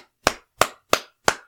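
Four sharp hand claps in a slow, even rhythm, fairly loud, with brief silence between each clap and no other sounds.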